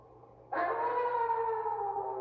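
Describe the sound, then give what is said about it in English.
A werewolf howl sound effect cuts in abruptly and holds as a loud, sustained, mid-pitched wail with rich harmonics and a fairly steady pitch, with no one talking. “Do you like our sound effects? It's a werewolf howling.”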